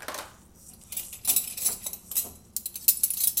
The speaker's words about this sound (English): Let's see if it rolls in when I get this last chunk of silverware out of here. Oh my gosh, I'm gonna take it out a piece at a time, because like, although, I don't know, it didn't.